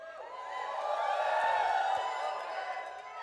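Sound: audience shouting and cheering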